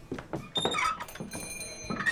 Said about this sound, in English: The door squealed as the young men entered the Oriental Saloon.